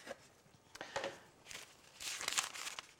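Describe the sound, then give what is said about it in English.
Quiet rustling and crinkling of a perforated paper piano roll being handled, in irregular soft bursts that swell louder toward the end, with no voices. The roll stores a piano performance: the musical programme is punched in the centre and expression codings in the left and right margins. “Well, quite simply, it was on a paper roll, such as we have here.”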